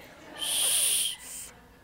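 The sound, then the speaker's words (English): A weak blow on a small emergency whistle built into a knife: one thin, breathy, very high-pitched tone lasting about a second, briefly fading and then trailing off. No one speaks. “If my whistle doesn't work, this whistle supposedly hurts your ears.”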